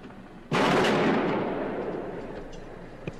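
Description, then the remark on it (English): A single loud gunshot, fired from the observation deck of the University of Texas Tower, cracks out sharply, then a long rumbling echo slowly decays. Faint clicks and ambient noise follow, with no voices. “There must have been a hit that last time.”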